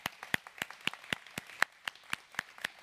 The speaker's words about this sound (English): So for our first-time guests, what we like to do is welcome you with a hand clap. So could we welcome our first-time guests?